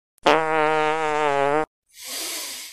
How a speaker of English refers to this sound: when you break wind, you don't emit a chemical weapon more deadly than sarin gas